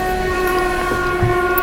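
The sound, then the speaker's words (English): An old graffiti-covered train arriving, its loud steady drone carrying sustained tonal whines and a hum of machinery with faint rattling underneath. No one speaks. “They have a distinct smell. And they have a distinct sound. So I'm going to get on board.”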